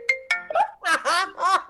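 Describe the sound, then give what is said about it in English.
A phone ringtone of an incoming call plays: two bright chiming notes that ring and fade, followed by three warbling, voice-like melodic bursts in quick succession, fairly loud with no talking over it. “Lou called me, and I didn't answer.”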